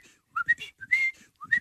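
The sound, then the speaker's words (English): A person whistles a quick series of short, chirpy notes that slide up and down, imitating a pet cockatiel. The whistling is clear, with brief pauses between bursts and no talking. “And well, that's a bird.”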